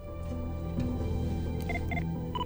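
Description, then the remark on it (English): A telephone sounds with a few short electronic tone bursts in quick succession over a steady low hum, fairly quiet and with no one speaking. “Because this is the phone call that he got.”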